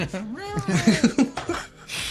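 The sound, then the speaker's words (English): A person playing a cat character in a tabletop role-playing game mimics a cat's meow, a drawn-out, wavering vocal whine that breaks into a few short pulsing bursts before trailing off. “Kill that shit, Prim, but I'm a cat, so meow.”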